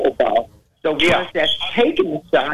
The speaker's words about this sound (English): Your radio on, sir? Are you listening to your phone or the radio? I'm listening to the phone. Yeah, because I hear your radio in the background. It's way back there.